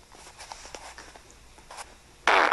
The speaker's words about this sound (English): Wow, that was power. That was a good one. Okay. Those are real. These aren't fart machines.